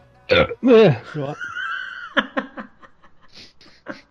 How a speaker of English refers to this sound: Burps, and then says, what?